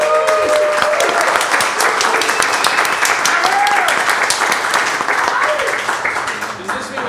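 loud audience applause

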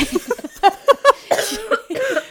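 coughing

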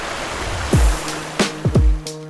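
rushing river water

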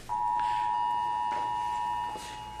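phone emergency alert tone

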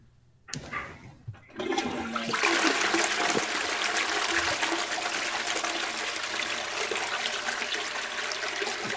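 toilet being flushed

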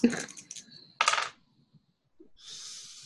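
dice being rolled

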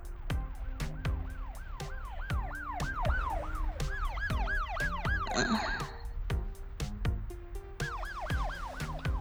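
sirens in the distance

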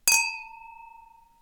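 glasses clinking

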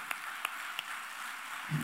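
audience applauding

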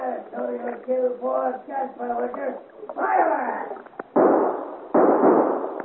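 gunshots fired

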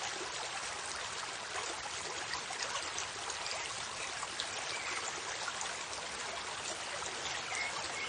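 flowing river water

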